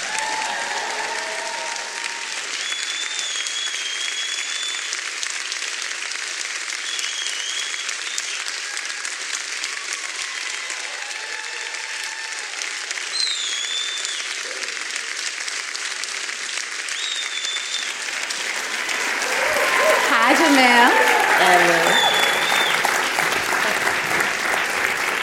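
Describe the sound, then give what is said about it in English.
Sustained audience applause welcoming Hana Baba and Jemele Hill fills the whole stretch, with several high, sliding whistles cutting through; the clapping swells louder near the end with cheers and whoops mixed in. “So thank you, whoever's whistling in here.”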